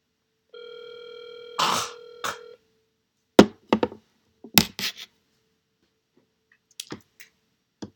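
A steady electronic telephone tone hums for about two seconds, followed by a series of sharp clicks and clatters like a handset being handled, then a few faint ticks near the end.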